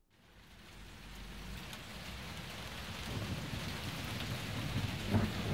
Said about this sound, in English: Hear that rain falling.